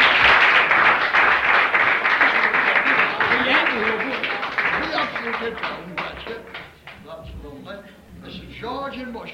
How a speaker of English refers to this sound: Give them all a good clap.